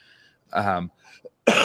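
One person's voiced cough and another person's sharp, noisy sneeze erupt one after another within a second and a half. Both are loud, with brief quiet between them and no talking.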